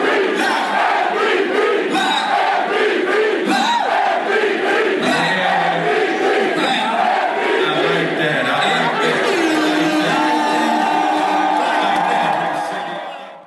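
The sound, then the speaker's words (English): A large, packed crowd at a rap concert chants "MVP" in unison, loud and sustained, voices rising and falling in a repeated rhythmic cheer with whoops and shouts layered over a dense roar of many voices. “Yes, MVP chants really, really happened at a rap concert.”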